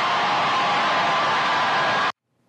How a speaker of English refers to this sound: And the crowd went wild.